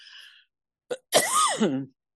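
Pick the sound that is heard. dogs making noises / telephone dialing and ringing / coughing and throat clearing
coughing and throat clearing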